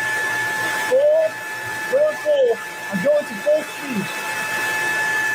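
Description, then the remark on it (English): A powerful leaf blower roars steadily at full speed, blowing dirt around on the floor, a dense rushing hiss with a thin, constant high whine running through it, while a man speaks in short bursts over the noise. “We're talking hurricane force winds here, people. You really hear that puppy ripping.”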